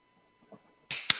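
Two sharp hand claps in quick succession, crisp and bright, the second one louder and snappier, with no talking around them.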